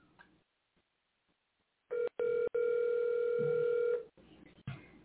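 A few sharp clicks on a telephone line as a caller hangs up, then a steady electronic phone tone holding for about two seconds before cutting off, with faint line noise around it.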